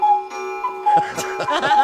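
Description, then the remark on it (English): The many clocks in Judy's house tick at once, their sharp clicks overlapping in an uneven, jumbled rhythm over a steady humming tone, moderately loud. “No, that's what Judy's house sounds like with all the clocks.”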